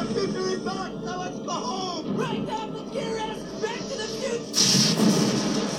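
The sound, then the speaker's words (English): People talk over a steady rumbling background in a film scene, then a sudden loud lightning strike cracks in, its harsh thunderous roar filling the last second. “Don't get struck by lightning.”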